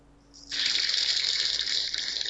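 A steady, loud hiss of shaving cream spraying from an aerosol can, starting abruptly after a faint lead-in and holding evenly for about two seconds, with no talking.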